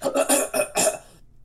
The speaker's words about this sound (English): My G trying to clear his throat.